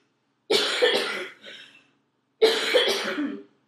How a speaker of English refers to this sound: I'm so sorry. You might have to cut my coughing out. I literally can't.